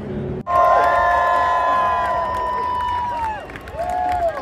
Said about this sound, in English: Crowd absolutely loving it here today. Absolute belter, not a cloud in the sky,